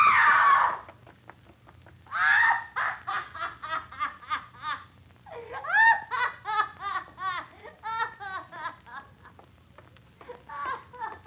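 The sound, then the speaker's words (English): A woman screams in loud, shrill bursts, breaking into rapid, choppy cries that rise and fall in pulses over several seconds, intense. “She screamed.”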